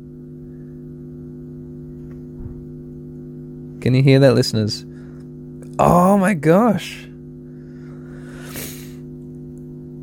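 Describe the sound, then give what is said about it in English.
A steady, low electrical hum drones without a break from start to finish, rich in buzzing overtones. A voice briefly speaks over it twice. “Okay, this humming electrical equipment in front of me, this...”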